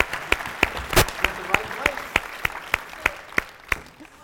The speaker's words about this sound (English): Clap it off. Clap it off.